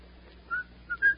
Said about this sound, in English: I notice you whistle that tune when things are going well.